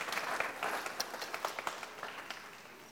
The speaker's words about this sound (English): All right, let's give a round of applause